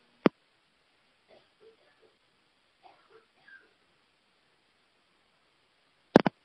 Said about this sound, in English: Hold on, I've got to cough again.